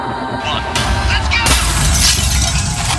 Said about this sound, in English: he grabs a trash can, hoists it over his head. He keeps it there for a long time, 5 seconds. 1, 2, 3, 4, 5. It doesn't seem like it should be a long time, but it feels like a long time. Then he throws the trash can at the window.